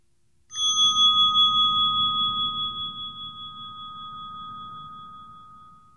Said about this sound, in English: Listening for the sound of the bell.